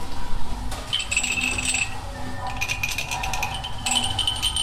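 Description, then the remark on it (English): Glass objects clink as people handle and play them in a sound art corner under a staircase, where they are used while listening to a sound composition on a tablet, with bright, high ringing tones that sustain and overlap in a few bursts, over a low, steady background rumble. No one speaks. “It's a tablet with a sound composition and then some glass objects that people can play with while listening.”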